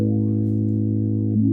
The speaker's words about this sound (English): I'm gonna go into the low pass filter section now. Okay. I'm gonna turn off the. Let me turn off the distortion for now. Okay. So that's a low pass filter on.